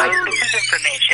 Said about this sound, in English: the alarm is annoying you, and the more it annoys you, the more the alarm goes goes on